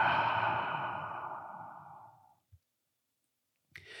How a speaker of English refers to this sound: And let's take a nice deep breath in through the nose. Great big inhale. Exhale out the mouth. Nice deep inhale through the nose. One more cleansing breath.